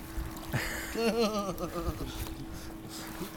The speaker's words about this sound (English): The waves are coming in again. If I fall into this lake with this camera, it's not going to be fun.